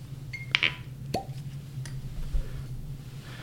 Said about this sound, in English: As we're pouring here, we've got some of the bottled in Bond Strait wheated bourbon whiskey, which, again, cheers.